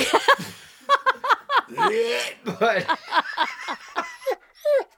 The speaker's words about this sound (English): The dog just started being sick. Oh, God.